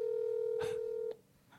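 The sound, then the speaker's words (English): Telephone dialing tones while calling people to see if they answer: a steady electronic phone tone hums for about a second, then cuts off with a click, followed by a faint tap of a keypress. “We'll just keep calling everybody.”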